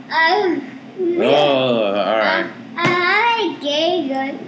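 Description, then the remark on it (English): A child puts on an exaggerated fake sneeze: a few loud, high-pitched voiced bursts with rising and falling pitch and a sharp breathy catch in the middle, no other voices. “Bless you with that fake sneeze of yours.”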